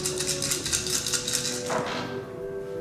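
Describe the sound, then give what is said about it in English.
A handful of many dice, rolled for a willpower roll in a game, rattles and clatters in a quick series of sharp clicks, ending in a brief scattered burst before quieting, with no voices. “Yeah, there's a lot of dice here, so we're good.”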